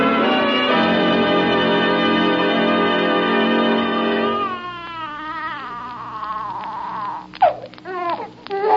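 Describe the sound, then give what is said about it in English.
A newborn baby girl weighing nearly 8 pounds cries in a long, steady, high-pitched wail, then breaks into wavering, quivering sobs with a couple of sharp louder bursts near the end. “Hush, baby, hush.”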